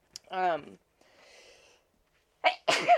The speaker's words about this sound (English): oh gosh, excuse me. Whoop. I have been sneezing like crazy. I think I need to dust my room or something. It's driving me nuts.